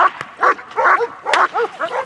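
A police dog barks loudly, firing off about five sharp, urgent barks in quick, steady succession with no voices around it.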